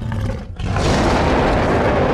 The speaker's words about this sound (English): A coal black dragon beats its wings as the waves erupt around it, half of a whale hanging from its mouth. It chomps down, the tail splashes back to the ocean below, and the dragon devours the half that's in its mouth before letting out a roar.